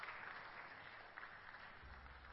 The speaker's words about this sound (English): Put your hands together for the King of Heaven.